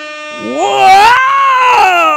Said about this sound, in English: Whoa! I'm really hoping that was cool, because I can't hear that. That was the air horn.